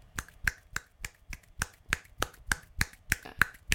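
A steady run of about a dozen sharp, crisp slaps from one hand clapping, the fingertips of one hand striking the base of its palm roughly three times a second, each a bright, snappy crack with no talking.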